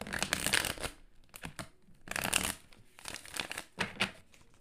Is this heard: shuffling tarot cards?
yes